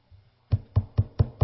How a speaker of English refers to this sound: The devil's going to come knocking on your door.